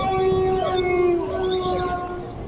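A dog howls in long, sustained, wavering tones with slight pitch glides, fairly loud, filling the whole stretch without any speech.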